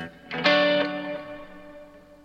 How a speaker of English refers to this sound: Get rid of the reverb there.